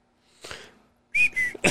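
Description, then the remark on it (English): A man whistles a quick run of two or three short, bright notes, fairly loud, after a brief breathy rustle; no one speaks. “You said whistle. He whistled. I thought it was your phone.”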